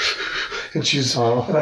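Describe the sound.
A person imitates a baby girl's fast, whimpering breathing after she had cried a lot: a short run of rapid, breathy panting gasps, then a few higher, voiced whimpers.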